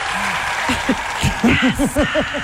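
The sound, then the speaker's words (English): A canned applause sound effect played on a show as a rock musician is introduced: steady crowd clapping and hiss with a quickening run of short, rising-and-falling whoops or cheers layered on top, fairly loud throughout. “I don't think he knew that we actually had applause sound effects.”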